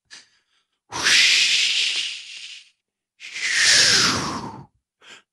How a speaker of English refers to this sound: Joe even added some wind sound.